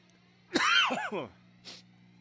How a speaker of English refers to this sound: Oh, here I am talking again, and I'm coughing.